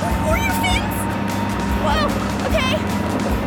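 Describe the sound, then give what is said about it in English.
A loud boat engine drones steadily throughout, a constant low rumble, with muffled voices faintly audible over the noise. “This boat is very loud, so I'm not sure if you can hear me.”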